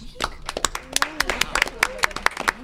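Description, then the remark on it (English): A small group claps for everybody involved in an irregular, scattered burst of sharp, crisp hand claps, with faint voices murmuring underneath throughout. “Round of applause for everybody involved.”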